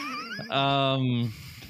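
A single drawn-out, whiny cat meow, fairly loud, rising into a steady nasal wail for under a second before cutting off, with faint background noise.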